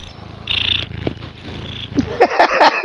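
A cat purrs loudly right beside the microphone, a continuous low rumbling with a steady pulsing rhythm and a few brighter chirps near the end.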